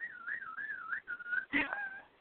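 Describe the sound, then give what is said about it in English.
The second of two pet birds sings alone in a steady, clear whistling warble, gliding up and down in pitch in several phrases, with a brief burst of rougher chirping partway through. “Now the other one's singing.”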